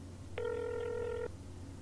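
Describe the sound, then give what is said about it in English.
A single steady phone ringback tone during a call to a landlord, a clear buzzy beep lasting nearly a second, heard over a line with a faint low hum before and after. No one speaks. “It's ringing.”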